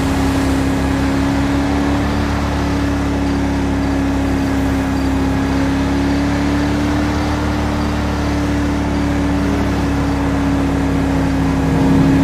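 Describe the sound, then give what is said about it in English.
The engine of a 5-ton military truck drones steadily and loudly as it is driven, holding a strong low hum with a slight rise in pitch, with no voices. “Driving like a sports car driver in 5M is awesome.”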